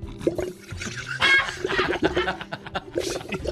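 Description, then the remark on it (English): A straw sucking at the bottom of a nearly empty drink, loud, with rapid gurgling, sputtering slurps that come in irregular bursts for a few seconds. “Like the bottom of a Slurpee.”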